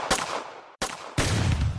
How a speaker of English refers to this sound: He hears another report, another gunshot, and this time he sees the muzzle flash.